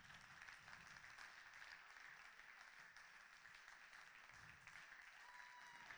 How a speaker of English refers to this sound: Come on, make some noise. Is there anybody else? Anybody else? Keep clapping, people.